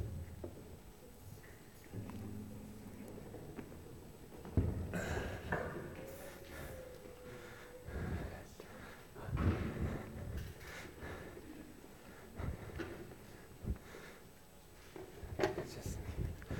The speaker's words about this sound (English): Yeah, can I get those others to come and join me? We're just going to do a bit of furniture removal and adjustment.